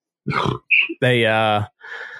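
A loud, drawn-out belch with a low, gravelly pitch, framed by short breathy grunts before it and a quieter rasping exhale after.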